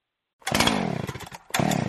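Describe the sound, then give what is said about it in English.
A chainsaw engine sputters to life, revs roughly, falters and nearly dies, then catches again with a loud buzzing roar. No one speaks. “Having trouble starting your trimmer, chainsaw, or leaf blower?”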